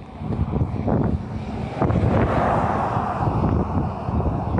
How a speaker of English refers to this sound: Hold on, there's a car.